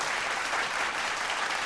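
A burst of audience applause, many hands clapping in a dense, steady wash of sound that holds at an even level for under two seconds, with no voices over it.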